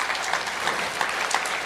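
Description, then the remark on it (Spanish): An audience in a church service breaks into sustained applause for God, a dense wash of many hands clapping steadily at an even loudness, with no voices standing out. “Regálale un aplauso a Dios si tú quieres en esta hora.”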